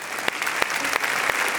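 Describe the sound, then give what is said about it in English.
An audience at a First Orlando church service applauds steadily in thanks and praise to God, a dense wash of many hands clapping at a moderate, even level, with a few sharper claps standing out from the crowd. “Hey, let's give him thanks and praise.”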